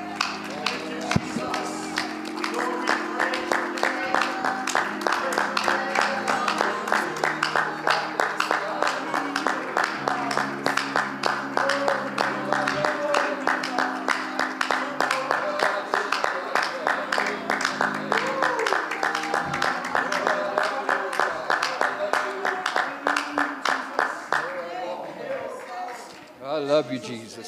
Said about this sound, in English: Why don't we stand today and let's worship God for a second, give him a hand clap of praise and thank him for what he's done for us.